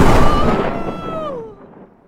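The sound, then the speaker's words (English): A cannon, lit after a person is loaded into it, fires a single loud booming shot, its blast fading over about two seconds while a thin descending whistle trails off into quiet. No one speaks. “I'm loading you into the cannon.”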